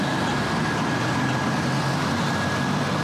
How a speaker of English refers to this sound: That's a bus going past. There's a bus going past, yeah. It's a red bus.